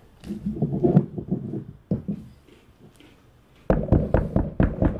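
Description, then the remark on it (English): Knocking on a door: a quick burst of raps, a pause, then a louder run of about five firm, evenly spaced knocks, with no voices. “On the door. So, 1 second. I'll be right back. Goes and answers the door.”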